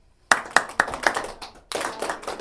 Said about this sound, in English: So let's just clap that pattern to remind ourselves. Everybody clapping and joining in with the pattern. I will clap it first and join in when you feel comfortable. Charging along.